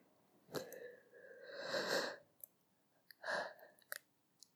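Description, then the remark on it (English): A person yawns: one long, breathy, drawn-out exhale with a voiced groan, followed by a shorter breath and a few soft mouth clicks. “See, I just yawned.”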